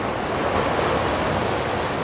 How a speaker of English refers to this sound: The sea is turquoise at the moment, and it's coming into this small craggy inlet and crashing against the rocks.